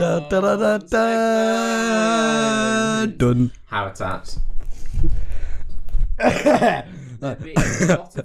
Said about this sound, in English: Exaggerated cough. Sorry, that probably sounded awful.